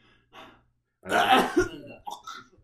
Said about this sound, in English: You're asymptomatic. You have a mild cough. I have a mild cough. You have COVID.